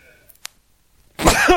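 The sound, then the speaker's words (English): A man sneezes once, a loud, explosive sneeze after a near-silent stretch, harsh and breathy with a brief voiced, wavering tail, overpowering everything else. “He just sneezed and blew my eardrums out.”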